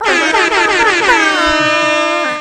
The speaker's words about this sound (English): we need the air horn.